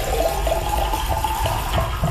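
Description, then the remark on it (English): Water runs steadily in a continuous rushing stream as someone fills their drinking water, loud with no talking. “No, I had to fill my water.”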